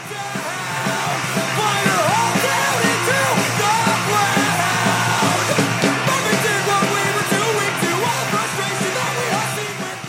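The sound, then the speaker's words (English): A loud, raw punk song celebrating Marvin Heemeyer plays throughout, with shouted, hard-to-decipher vocals over a dense, distorted wall of guitar and drums at a steady, driving intensity. “We found YouTube videos with titles like Marvin Heemeyer's Valiant Last Stand, and he celebrated in this rather hard-to-listen-to punk song.”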